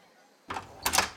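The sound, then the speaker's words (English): A few quick, solid knocks on an ornate door bearing a small plaque reading The Fashionistas, fairly loud, a brief cluster of raps following a softer thump, with no voices over them. “Blatt knocks upon the door.”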